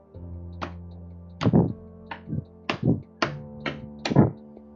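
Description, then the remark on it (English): Several hollow knocks on a door, irregularly spaced and fairly loud, some landing as quick doubled raps, with a low steady hum in the background. “After a minute of knocking, he went to the bathroom.”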